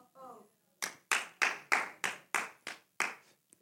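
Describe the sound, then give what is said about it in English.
An audience claps in unison for a Bible scripture reading during a sermon: about eight sharp, loud claps in a steady, even rhythm, following a brief murmur of voice at the start. “So you don't, I mean, you can clap for the Bible.”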